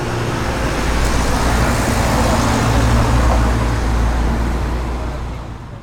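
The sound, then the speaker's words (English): A truck rumbles down a street, its engine and road noise a steady, loud wash that holds for several seconds before easing slightly at the end. “You're trying to get this truck to hit me.”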